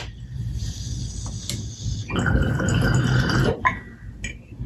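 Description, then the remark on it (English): Water bubbles and gurgles in a water pipe, a steady close-up burble lasting about a second and a half, with quieter drips and rustling before and after. No one speaks. “Man, just filtering through this water, this setup you have is just amazing.”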